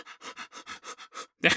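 A man pants in quick, steady breaths, about eight short huffs in a row, close and fairly soft, ending with one louder, harsher breath.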